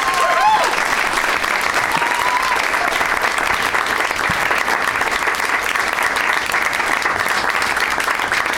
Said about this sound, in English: One more round of applause for all of my guests, Graham Elwood, Ryder Strong, and Geoff Tate.